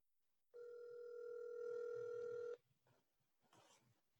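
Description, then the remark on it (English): A phone line rings out with one steady electronic ringback tone lasting about two seconds, clear and fairly loud, then falls quiet apart from faint rustling while waiting for a friend to answer the call. “I hope she answers, because if she doesn't, it's going to be very embarrassing.”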